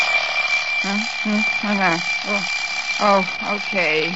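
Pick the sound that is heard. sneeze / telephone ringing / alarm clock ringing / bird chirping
alarm clock ringing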